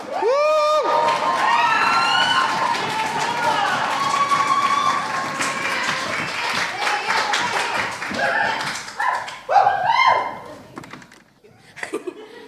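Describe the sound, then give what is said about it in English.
A crowd at a poetry slam applauds steadily as the evening's third poet is welcomed to the stage, the dense clapping joined by high whoops and cheers near the start. The applause thins out toward the end, leaving scattered claps and a few voices. “And keep that applause going for our third poet of the evening.”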